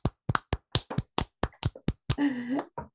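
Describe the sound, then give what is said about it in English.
About ten sharp hand claps in a quick, slightly uneven rhythm, followed by a brief tonal vocal whoop and one final clap, clapping out the end of a song bracket for a vinyl album. “And as we do at the end of every single bracket, we are going to clap it out.”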